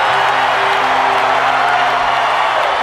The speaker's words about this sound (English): Boom, you know, this gigantic pay-per-view. Best buy rate in the history of the company, just to, you know, hear the crowd react. So much emotion! Sting, World's Heavyweight Champion.